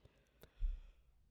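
A soft, breathy yawn, a low drawn-out exhale lasting about half a second, fairly quiet, preceded by a brief faint click.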